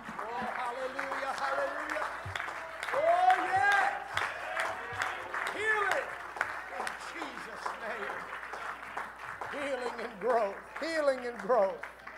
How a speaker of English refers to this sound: If you believe it and receive it, would you stand to your feet? Would you clap your hands? And would you just begin to give glory to God right now?